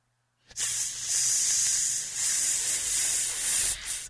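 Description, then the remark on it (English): A steady hiss starts abruptly after a brief silence and runs continuously for several seconds with slight swells in intensity, bright and airy like a snake's hiss or escaping air. “You want to know what that hissing sound is?”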